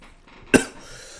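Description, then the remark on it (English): A single sharp cough bursts out in the middle of quiet background hiss, brief and loud with a short tail. “Sorry, I'm coughing.”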